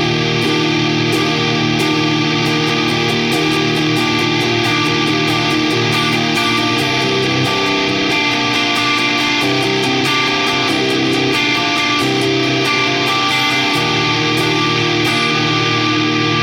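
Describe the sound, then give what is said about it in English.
A heavily distorted electric guitar plays through a germanium fuzz pedal with fuzz and output maxed, clarity at 2 o'clock and pre-gain at 10 o'clock, giving sustained, buzzy fuzz chords with a thick, saturated tone, ringing steadily and loudly with no one speaking. “germanium. With exactly the settings I was mentioning, but in case you already forgot, fuzz and output are dimed.”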